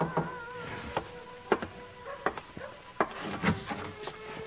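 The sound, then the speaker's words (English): Several knocks on a wooden door of a room in a building, sharp hollow raps spaced unevenly over a few seconds, fairly quiet, with no voices. “Feelings that made me glad to find out who it was that knocked at my door.”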